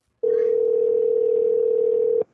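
An outgoing phone call's ringing tone: one steady, loud electronic burst lasting about two seconds, then cutting off abruptly, with no voices.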